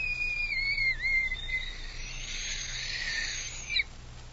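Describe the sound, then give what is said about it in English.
A thin, high tone from a little, old, battered and musty tin whistle being blown, its wavering tone dipping and sliding for a moment before fading into a breathy, airy hiss that ends with a short puff. “As if to mock me, I absentmindedly picked up the little tin whistle which was in the box of old things.”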